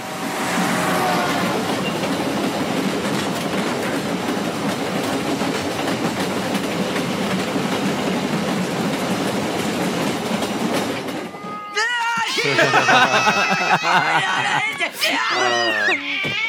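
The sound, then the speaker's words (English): A Union Pacific train rumbles steadily past on the rails for about eleven seconds, a loud, dense roar with faint clacking, then cuts off abruptly and voices follow. “Of her appearing from behind the train, just throwing a cat at Lisa.”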